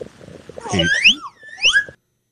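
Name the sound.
slide whistle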